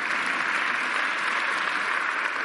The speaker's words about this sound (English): You're clapping now, but let's see next week.